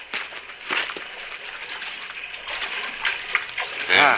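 Water splashes and sloshes steadily for several seconds, with a brief voice sound near the end.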